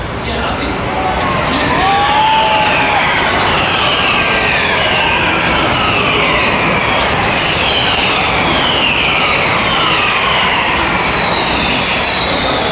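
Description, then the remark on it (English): A loud, continuous roar of several race cars coming around the corner and sweeping past down the straight after the safety car pulls into the pit lane, their high engine notes rising and falling in overlapping descending whines as each one speeds by. “Okay, the safety car has, or the pace car has pulled in to the pit lane, and here they come around the corner down the straight again.”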